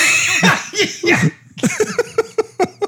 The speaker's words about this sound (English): Oh, I was choking my own spit. Oh, that was a good one.